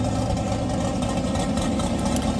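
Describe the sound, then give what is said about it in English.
A car with a handmade carbon-fiber wide body idles with a lumpy, uneven lope, its deep rumble steady throughout, with no talking over it. “Here we are listening to the lopiness.”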